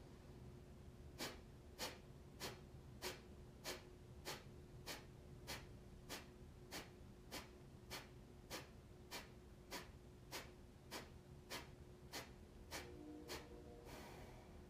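About twenty sharp, forceful exhalations through the nose, Kapalbhati breathing, each followed by a simple natural inhalation, fire off in a steady quick rhythm, roughly two per second, each a short breathy puff, clear with no talking.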